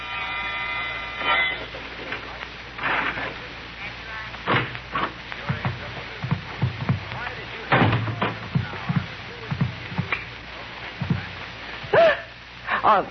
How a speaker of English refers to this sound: About midnight, my dreams of a vine-covered cottage in the country with Mallard were rudely shattered by a sound. The sound of a key in the lock of the door.